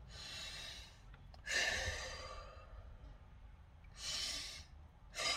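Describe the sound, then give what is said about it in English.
A demonstration of slow, deep breathing: a long airy inhale or exhale, a pause, then another strong breath, with a third starting at the end. No talking. “Take some deep breaths.”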